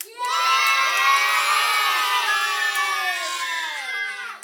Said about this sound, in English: The crowd spontaneously broke out into chants of "Save our kids, save our kids, save our kids."